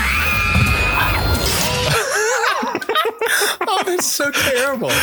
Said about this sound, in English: Is that the people screaming that are getting eaten by this thing? Or no, that's the Victory Bell. It just screams. The Victory Bell. That's the Victory Bell.